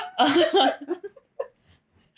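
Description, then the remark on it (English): A burst of throaty coughing, then a few short, quieter sniffs and a sharp nasal intake at the end, with no one speaking, from a woman having an allergy attack. “I'm having an allergy attack, so I apologize.”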